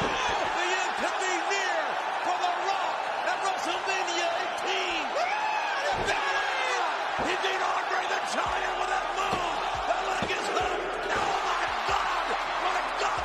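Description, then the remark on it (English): A huge wrestling arena crowd in Toronto roars and cheers steadily as a wrestler puts the Rock down, with overlapping shouts and whoops rising out of the din, plus a few sharp slams and thuds punctuating the noise. “It's the crowd.”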